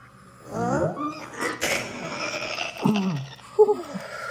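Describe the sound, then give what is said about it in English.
Someone clears their throat in a few gruff, rasping bursts, with voiced grunting tones between harsh noisy pushes, ending in a short sharp hum; no words are spoken. “Just clearing my throat, sorry.”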